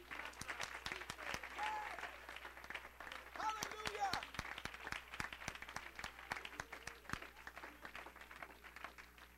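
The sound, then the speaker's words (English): An audience claps hands to the Lord in a sustained, dense round of applause lasting several seconds, with scattered voices calling out over the clapping. “And let's clap our hands to the Lord one more time before we're seated.”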